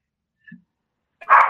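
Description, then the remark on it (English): A single loud dog bark bursts out near the end, preceded by a brief faint low grunt-like sound and otherwise quiet surroundings. “Dogs are dogs.”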